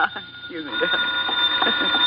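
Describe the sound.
A telephone rings steadily in a thin, high trill that runs through the whole moment, while people talk over it at a louder level.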